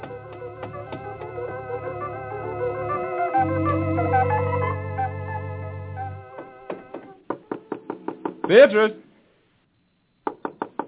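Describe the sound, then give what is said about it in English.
After several seconds of sustained tonal music, someone raps rapidly and firmly on a wooden door, a quick run of knocks, a short pause, then another brief flurry of knocking. “Open the door!”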